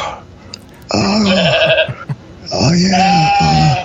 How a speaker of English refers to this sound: Oh, the goat's saying hi to you. Oh, hi.